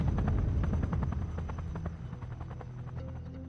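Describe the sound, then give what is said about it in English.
A helicopter's rotor beats out a steady, rapid chop with a heavy low rumble, loud at first, then easing off slightly as it moves past. No one speaks. “and always the chop and swoosh of the black choppers that examined the city block by block like an angry swarm of hornets.”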